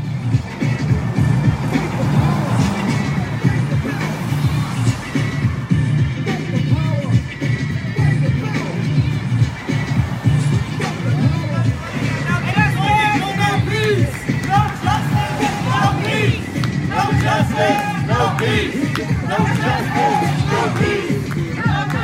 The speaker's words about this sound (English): Now, at another restaurant, they were blasting music. I'm not going to tell you the song. I don't want to spoil it. And they were also shouting, "No justice, no peace."